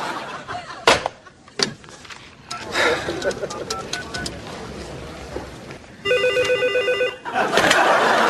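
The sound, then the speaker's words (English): A telephone rings in a single sustained burst of bright, electronic trilling, preceded by sharp clicks and clatter against a noisy, busy background with faint voices. “I'm sorry, I've been answering the phone my whole life.”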